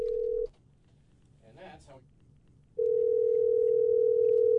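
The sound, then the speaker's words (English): A steady, loud telephone dial tone hums while a call is placed from a radio studio to reach a grandmother, cuts out briefly for a short burst of background noise, then resumes and holds steadily to the end. “is currently trying to get my grandmother, my actual grandmother, on the phone.”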